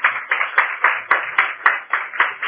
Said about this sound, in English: Hallelujah. Give a clap offering to Jesus Christ.